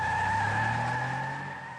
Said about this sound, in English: But I was just in a mood that day, and I'm like, I can't even go for a walk without some jerk in a big truck gunning it off the stop sign.